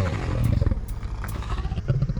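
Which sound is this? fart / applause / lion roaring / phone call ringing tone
lion roaring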